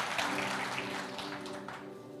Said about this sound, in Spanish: Denle a Dios un fuerte aplauso.